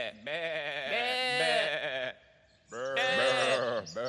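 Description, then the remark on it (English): A sheep bleats twice, each call long, loud and quavering, with a brief silent pause between them and no talking. “You have to be brave to be a sheepdog, because sheep are muckle beasts, and if they get their bursts up, they can be quite aggressive.”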